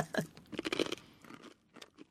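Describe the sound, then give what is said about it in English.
Crunching of a crisp snack being chewed, a quick series of sharp, brittle bites and grinding chews over about two seconds, fairly quiet with no talking. “A lot of crunch factor here.”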